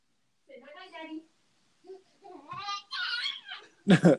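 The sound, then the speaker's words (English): A young child, just out of the bath, lets out a string of high, excited squeals and giggly vocal bursts, ending in one loud, sharp shriek of joy. “I love hearing like that shriek of joy.”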